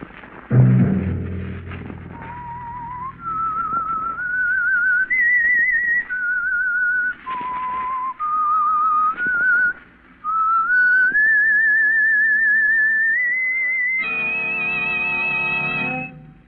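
The whistled theme of The Whistler: a lone whistled melody, clear and steady, stepping through a tune of sustained notes with slides between them, ending on a long high held note over a low hum; a dull thud opens it.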